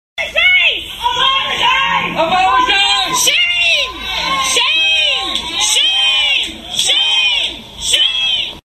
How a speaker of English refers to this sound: And on Monday morning, protesters gathered around her home to scream at her family.